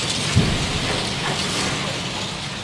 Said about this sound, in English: And right in front of me is a huge machine, and it is several stories high. But just listen to this.